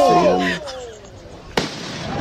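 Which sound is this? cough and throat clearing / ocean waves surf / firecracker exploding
firecracker exploding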